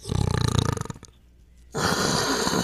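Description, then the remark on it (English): A rough, fluttering snort of rapid low pulses, a short pause, then a steady breathy hiss that runs to the end, both made by a voice blowing through an empty paper towel roll as a Lion King roar challenge. “I snort, then I hiss. Yes. To my cardboard tube.”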